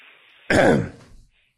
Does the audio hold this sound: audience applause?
no